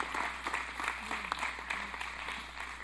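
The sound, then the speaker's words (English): A crowd claps steadily together to give Jesus a hand clap, a dense, continuous wash of many hands applauding at an even level throughout, with no voices standing out above it. “Come on, give Jesus a hand clap.”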